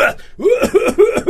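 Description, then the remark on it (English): A voice imitates a coughing fit: four or five quick, rough cough bursts in a tight rhythm, fairly loud, with no other sound around them. “Lately, the last 2 days, I've seen him out there and he's been like coughing up a storm.”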